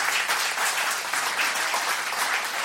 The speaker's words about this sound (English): Give him a big hand as he comes. Amen.